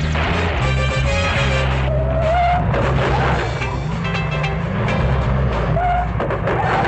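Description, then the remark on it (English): A car roars with a heavy, steady engine rumble while tires briefly squeal and skid a couple of times over a dense, noisy wash of road sound. “Man, this car's a real dud.”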